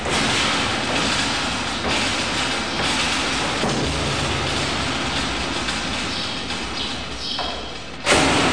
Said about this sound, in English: Now he's carrying the barrel up, and he's going to bang it on the mesh, which makes more difference.